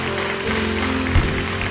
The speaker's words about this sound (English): Come on, let's give the Lord a hand clap of praise. Amen.